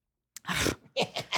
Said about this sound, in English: God bless you.